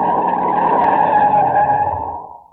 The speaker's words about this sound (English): We're coming to another turn. Okay, now brace yourselves. I'm shutting the brakes on hard.